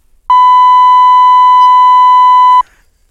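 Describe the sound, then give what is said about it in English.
A single loud, steady electronic bleep at a fixed pitch sounds for a little over two seconds, starting and stopping abruptly, like a censor tone, with near silence around it. “That was the last beep. The last intentional beep, okay?”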